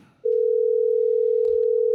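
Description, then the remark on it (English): A loud, steady telephone dial tone, heard while calling back a cinema, starts abruptly after a brief quiet moment and holds unbroken to the end, with faint background rustling beneath it. “Let's call back to see if they got our message.”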